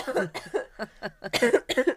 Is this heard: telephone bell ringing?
no